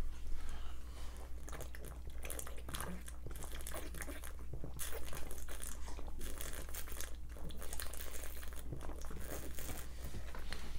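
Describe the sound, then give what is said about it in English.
People, starting with Steve-O, chugging beer into a microphone in a waterfall drinking round: a continuous run of wet gulping, slurping and swallowing noises with crackly mouth sounds, fairly loud and steady throughout, over a low constant hum. “Can I just point out that oh the sound God. Of people drinking beer and the in a microphone right sounds yeah. disgusting?”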